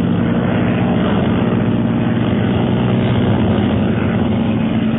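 A steady, loud propeller airplane engine drones continuously as the planes drop lower to fire on police below, with a dense low rumble and harmonic hum that stays constant throughout, no voices present.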